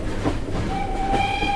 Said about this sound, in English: We begin in a baggage car. Trunks full of books and clothes rattle as a train moves east. On a small card, the trunk's owner and destination. A. Lincoln, White House, Washington, D.C.